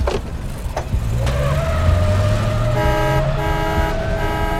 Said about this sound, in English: Why is there always traffic when I don't need there to be traffic?